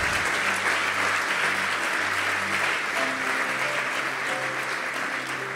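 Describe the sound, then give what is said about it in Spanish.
A crowd applauds at the speaker's request, celebrating their own generosity in paying for young people's education and helping with illnesses. Steady clapping for several seconds, a dense wash at an even level, with faint low tones or murmur underneath. “Vamos, aplauda, por favor.”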